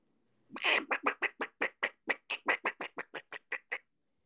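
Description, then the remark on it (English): A person imitates a duck, letting out a rapid run of about fifteen loud, nasal quacks in a steady rhythm, starting with a longer burst and continuing in short evenly spaced bursts. “Then he can talk like a duck, too.”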